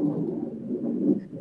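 A deep, steady rumble of thunder from a storm with lightning rolls through the whole moment, fairly loud and muffled, with no voices over it.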